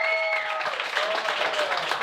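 An audience claps together in a dense, steady burst of applause that holds at an even loudness for about two seconds, with a brief high-pitched cheer audible near the start.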